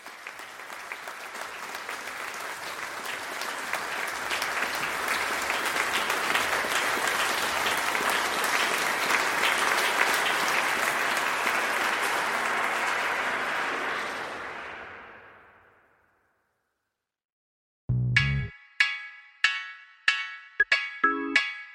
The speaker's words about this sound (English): What they would have never expected was to see their staff of hundreds stand before them, applauding their efforts for 20 minutes straight.